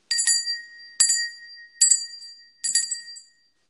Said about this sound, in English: So it's called a prayer to the Supernal Parents, and I'm actually going to use a bell to kind of open this.